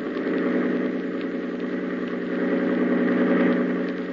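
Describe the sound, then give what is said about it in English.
A boat's engine, opened up to full throttle, roars steadily at high power, its deep hum swelling slightly toward the end, with no voices present. “Grady, hold tight to the wheel and open the engine up full.”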